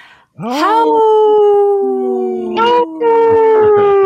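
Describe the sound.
A person lets out a long, loud wolf-like howl, the pitch sliding up and then holding steady in a sustained wavering tone, with a second voice briefly joining near the end.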